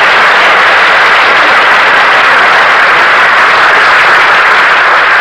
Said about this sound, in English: ladies and gentlemen, I know that you will join in my wish that the applause you have just given be transferred to the woman who rightfully deserves it.